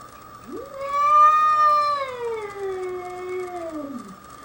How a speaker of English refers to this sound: By the way, this is a bobcat.